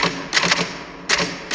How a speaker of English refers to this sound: And we're gonna make a new rule. Whenever I'm in here, and you hear me typing.